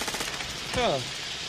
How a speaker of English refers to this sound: Yeah, you're going to hear both the shouting and the one-liners, and definitely the gunfire in this clip.